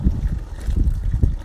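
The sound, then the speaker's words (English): Cooled, whirlpooled wort at about the low 70s pours and splashes steadily into a fermenter, raising lots of bubbles: a continuous low, burbling gush with uneven surges and no voices. “And the nice thing about this is it's, as it dumps in there, you see a lot of bubbles.”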